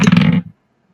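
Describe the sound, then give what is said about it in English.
A heavy die lands with a loud, booming rattle right by the mic, a dense low-pitched clatter lasting about half a second before cutting off into silence. “Well, that one ended up landing right next to the mic.”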